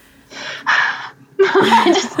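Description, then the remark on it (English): Someone breathes heavily in excitement: two quick, breathy gasps followed by a longer, partly voiced panting exhale, loud and alone with no talk. “Heavy breathing.”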